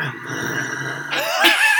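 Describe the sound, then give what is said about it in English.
A human voice imitates a growl: a steady, rough rumble for about a second, then it rises in pitch and swells louder into a harsher, snarling finish. “Caleb could only growl in response.”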